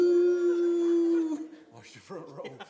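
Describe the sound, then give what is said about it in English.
A person imitates a dog's howl with one long, steady, loud note held for over a second, then breaks off into a few quieter bits of speech. “Every time I'd sing a note, he'd howl.”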